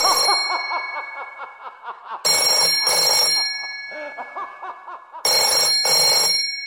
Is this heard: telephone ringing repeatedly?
yes